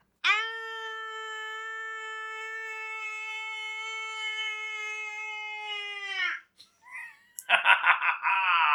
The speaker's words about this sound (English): I can't scream because I've got such a deep, muscular, manly voice, English. So I'll say, I'm going to scream.